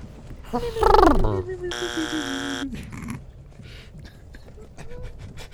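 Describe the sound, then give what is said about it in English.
A short rising-and-falling vocal sound, followed by a loud, steady electronic answer buzzer, pressed by a dog, that sounds for about a second before cutting off, then quiet background noise with faint clicks. “don't hit that buzzer.”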